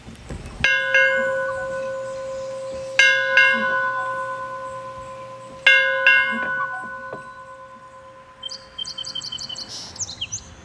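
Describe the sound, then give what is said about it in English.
A bell echoing through a valley is struck three times at a slow, uneven pace, each clang ringing on with a long, resonant decay, while songbirds chirp softly throughout and more busily at the end. “And a bell echoing through the valley.”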